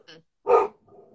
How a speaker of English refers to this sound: I'm going to have to go give that dog Bentley, hush